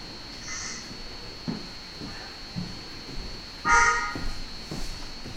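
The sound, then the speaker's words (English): Two pet cats, Pasta and Ghost Owl, fighting as Pasta attacks Ghost Owl: a short, strained yowl followed a few seconds later by a louder, harsher squall, with scattered soft thumps and scuffling between them and no talking. “Pasta was attacking Ghost Owl very intensely.”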